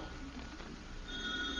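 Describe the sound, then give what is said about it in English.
A telephone rings faintly downstairs at 4 o'clock, its electronic trill starting partway through against a low background hum. No one speaks. “The telephone's ringing.”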